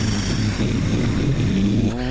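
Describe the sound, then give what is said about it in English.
A starship's engines, on the ship Sarissa, rumble to life with a loud, deep, steady roar, then a rising whine climbs in pitch toward the end as they power up. No voices. “Dax fires up the engines.”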